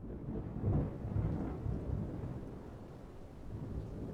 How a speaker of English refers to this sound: formed a dark, puffy cloud, where little streaks of lightning flashed, and which thunder clapped ever so softly.